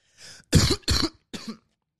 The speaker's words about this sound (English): That was nasty. I just coughed in y'all fucking ears. I apologize.